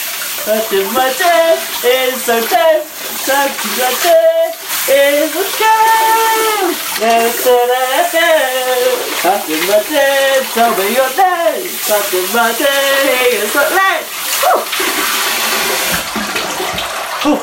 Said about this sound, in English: My phone is in great danger of getting wet. Ooh. It's quite a powerful shower.